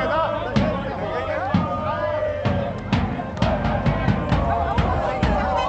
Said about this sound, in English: And as they surrounded the bus, cheering, chanting, they were singing, "The people want the African Cup. They believe it."